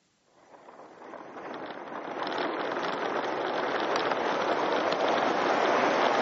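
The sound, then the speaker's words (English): A roller coaster roars through a tunnel, a dense rushing rumble that swells up within the first couple of seconds and then holds steady and loud, with no voices. “And that's the Beast. It's my favorite roller coaster, or my wife's favorite roller coaster.”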